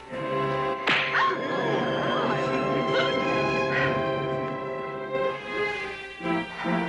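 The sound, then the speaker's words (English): A single sharp slap across the face cracks out near the start, loud, then gives way to a steady, sustained tonal background. “It's he you should slap, dear. Not I.”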